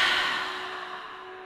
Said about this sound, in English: Take an inhale breath through the nose. Open the mouth, now exhale through the mouth.